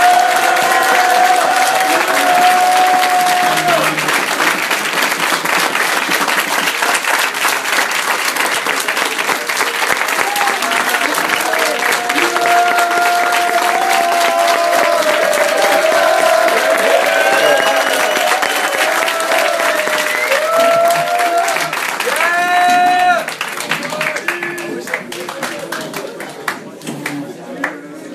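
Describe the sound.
A large audience claps steadily and loudly for almost half a minute, with voices calling and cheering mixed into the applause before it thins slightly at the end.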